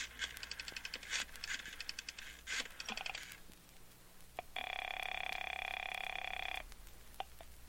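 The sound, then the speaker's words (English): A quick run of clicks and rattles, like coins or dialing, then a single steady telephone ring lasting about two seconds, fairly loud, with no voices, as a long-distance phone call is placed. “And it's going to mean a great deal more, I believe, after I make a long-distance phone call.”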